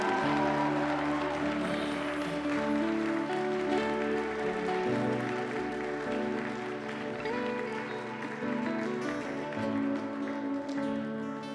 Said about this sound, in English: Come on, you do better than that. Give the Lord a big hand clap for this gift.